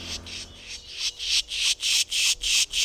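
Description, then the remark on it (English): A person pishing: a rapid, steady run of about eight harsh, airy hissing bursts, imitating the scolding call of a tufted titmouse or Carolina wren, with no talking. “The idea is to imitate a scolding call of a tufted titmouse or a Carolina wren.”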